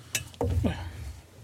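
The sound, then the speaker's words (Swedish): A beer bottle cap pops off into a microphone with a brief sharp hiss, followed by low clunking handling sounds and a faint fizzing tail, with no talking. “Jag vill bara öppna i micken.”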